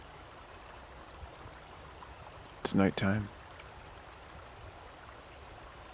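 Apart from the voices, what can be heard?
flowing stream water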